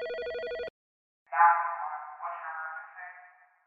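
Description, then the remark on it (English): A telephone rings: a short buzzy electronic trill, then a brief silence, then a longer, wavering ring tone that fades after about two seconds. No one speaks. “I've called the ambulance.”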